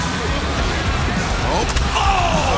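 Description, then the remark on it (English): A wrestler is slammed face first onto the top of a metal ladder, landing with a sharp clattering impact midway through, over a loud, constant roar of an arena crowd and indistinct voices. “Oh, Matt Jackson just got slammed face first on that top of that ladder.”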